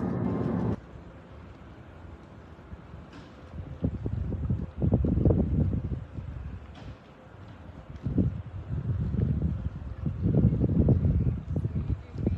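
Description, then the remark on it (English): An outdoor waterside scene with steady low wind rumble buffeting the microphone, broad washing noise rising and falling like water and boat motion, with brief faint speech-like murmurs. “I love coming out to the boats.”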